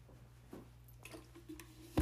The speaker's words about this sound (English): Sorry, I'm thirsty. I gotta take a sip. I'm not sorry. I'm thirsty. I gotta take a sip.